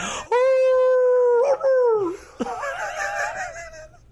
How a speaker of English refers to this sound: He was a good dog till the fucking singing started. Singing.